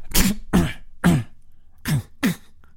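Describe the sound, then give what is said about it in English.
A voice imitates a nasal throat-clearing cough, like a cough that ends in the nose, five short snorting bursts in an uneven rhythm, fairly loud, with brief silences between them. “It is a throat nasal thing. It's like almost like a cough that ends in his nose.”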